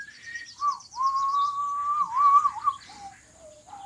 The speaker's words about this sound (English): He was so happy and he whistled all the way home.